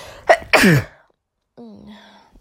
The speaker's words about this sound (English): Excuse me, yeah. So the allergies comes with a lot of sneezing as well. Some say it's like an orgasm, but believe me, it's not. And I've been sneezing for 3 days straight or so.